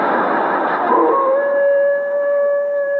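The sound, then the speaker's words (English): A coyote lets out a long, steady howl, its mating call, that rises from a rough, noisy start into a sustained wailing tone. It is loud, with no one talking. “Well, that's the coyote's mating call.”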